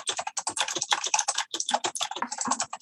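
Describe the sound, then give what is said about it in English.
Rapid, continuous clatter of computer keys being typed, dense irregular clicks with no voices, lasting a few seconds. “Keyboard clatter. Sorry.”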